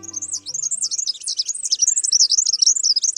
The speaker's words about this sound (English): This bird has a problem. The red-backed fairy wren is a tiny, perky songbird that lives in the scrublands of northern and northeastern Australia. It's highly territorial. Both males and females vigorously defend their territory from intruders.